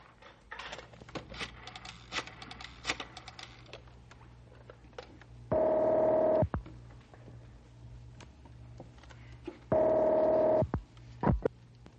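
A telephone is dialed to call a fire tower, with a run of small mechanical clicks, then rings twice in loud, buzzy bursts of about a second each, separated by a pause. No one speaks.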